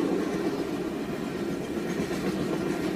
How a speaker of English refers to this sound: No, Mac, don't follow him. There's a train coming. Jojo, you pig! Watch out for the train!